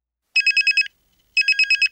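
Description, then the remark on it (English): A phone rings with an incoming call in two short bursts, each a rapid trill of five bright electronic pulses, separated by a brief pause; clear, with no voices. “It starts with a call. You pull out your phone, look down.”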